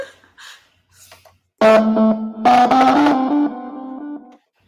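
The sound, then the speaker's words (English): An electronic keyboard plays a buzzy, distorted tone through a small speaker, played with one hand: one held note, then a short run of single melody notes, fairly loud, ending abruptly after a few seconds. “Again, I just know classical music, and you can only do one hand. Speaker sounding weird too.”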